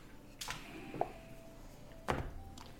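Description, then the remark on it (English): A door opens with a latch click and a faint drawn-out creak, then shuts with a firm thud about two seconds later as someone leaves. Quiet, with no voices. “He turns and he will open the door and leave.”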